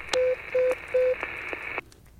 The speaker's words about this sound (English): I've been getting these weird calls for the past few weeks. I don't really know what to make of them. I mean, my phone rings, right? But it rings weird.